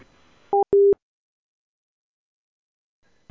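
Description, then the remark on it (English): A telephone busy tone after a hang-up: two short, clear electronic beeps in quick succession over a faint line hiss, then silence with no voices. “Oh, he's put the phone down.”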